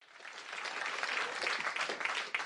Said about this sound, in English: I know you guys are only clapping like that because it's Black History Month. I get it and I appreciate it.